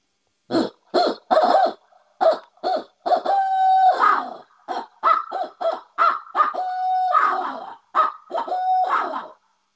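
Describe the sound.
A person imitates an owl's hooting by voice as a call to get a bird to gobble, a rapid run of loud hoots broken by a few longer, drawn-out notes, repeated in bursts over about ten seconds with no other sounds.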